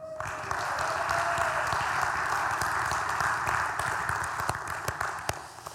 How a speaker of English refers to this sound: I had this plan where I was going to go, no, 25 years. You clapped for like 5, but I'm going to take that. That was pretty good.